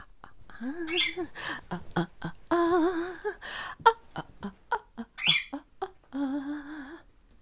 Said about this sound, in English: Hey, Zoe. I know you're cranky. That's a very cranky bird sound.